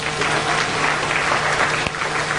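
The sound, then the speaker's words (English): A crowd claps steadily in a dense, loud wash of applause that holds at an even level throughout, with no voices standing out. “Applaud if your parents had it figured out.”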